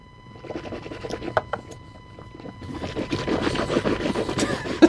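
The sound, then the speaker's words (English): Someone crunches a hard candy, with sharp, crackly bites at an uneven pace that turn louder and denser into a steady grinding crunch partway through. No one speaks. “Listeners who hate it when we chew are all dying inside right now.”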